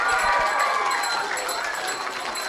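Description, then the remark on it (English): A group of children at Kildangan National School clap and cheer together for Santa arriving through the door at Christmas, a dense, steady wash of applause and excited voices that stays fairly loud for a couple of seconds. “Okay, have we a round of applause for Santi on this Christmas edition of the show?”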